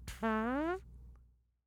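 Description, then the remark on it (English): A single loud, buzzy fart noise blown with the lips, lasting just over half a second with a slightly rising pitch, heard alone before fading into quiet. “Just make a fart noise.”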